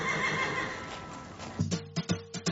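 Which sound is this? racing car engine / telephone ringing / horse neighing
horse neighing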